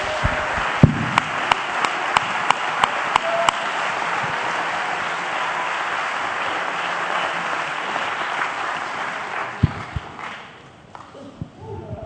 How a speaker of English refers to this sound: When you're seated, clap your hands because the Lord has given his word tonight. We just heard the word. Come on, let's now hear it.